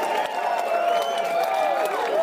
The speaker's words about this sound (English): Steve, can we get a round of applause?